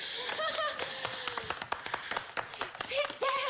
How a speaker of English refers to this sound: Now, they give her a pretty good clap, more than most.